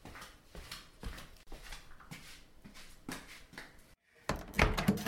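A series of soft, regular thumps and rustles as someone walks to answer the door for a delivery, then a brief pause before the door is opened with a louder clatter of handle and hinges.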